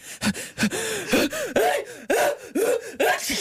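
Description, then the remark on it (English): A voice loudly mimics an exaggerated, aggressive fake sneeze, with a rapid run of about seven breathy, forceful bursts, each rising in pitch and then collapsing, with no other talking; done on a side court at Wimbledon. “big fake sneeze. Something that's kind of aggressive like this.”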